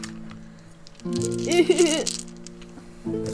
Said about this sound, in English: Which also means I get to roll 8 dice.